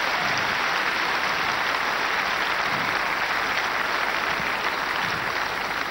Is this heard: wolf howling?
no